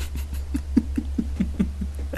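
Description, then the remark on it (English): A quick run of roughly eight or nine hard knocks on a door by housekeeping, evenly paced and dull, sounding over a steady low hum with no one talking. “She just knocked hard.”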